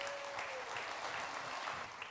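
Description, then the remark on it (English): Steady, sustained applause from a sizable crowd in a church as three women are welcomed onto the stage, a dense wash of clapping that stays even in loudness throughout with no voices standing out. “Oh, keep your applause going.”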